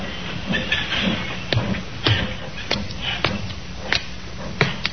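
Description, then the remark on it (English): Train sounds in a railroad yard at Alnmouth, in the coal district around Newcastle: sharp metallic clanks repeat at a steady, uneven rhythm over a continuous hissing steam rumble, moderately loud, with no voices. “A puzzle which began in the railroad yard at Alnmouth in the coal district around Newcastle.”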